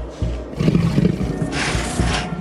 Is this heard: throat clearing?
no